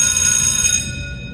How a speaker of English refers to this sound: Time out? No, not time out yet. I don't know why that happened. It's not time out yet. There must be Satan. Satan pushed that bell. No, it's not time out. No, that was an error on my part, you know, my sound effects.